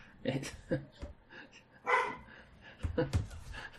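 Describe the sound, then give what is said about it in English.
Dogs bark in a scattered series of sharp, fairly quiet yaps and woofs spread across a few seconds, with some voices murmuring in the background. “Now my fucking dogs are going stupid.”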